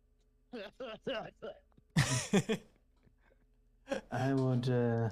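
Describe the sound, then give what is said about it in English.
A voice imitates a coughing fit: a few short, throaty bursts, then harsher, rasping hacks, ending in a drawn-out, strained groan. “All of you hear him coughing.”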